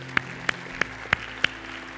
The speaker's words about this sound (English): And can we give Jesus another hand clap of praise in this place tonight?